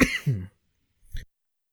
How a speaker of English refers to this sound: is currently having a coughing spell. Is everything okay?